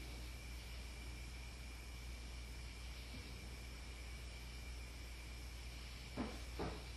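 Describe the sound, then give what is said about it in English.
Two dull knocks sound close together near the end, after several seconds of steady hiss and a faint mechanical hum, recorded in an attic during a paranormal investigation. Nobody speaks. “Can you make a knock for us?”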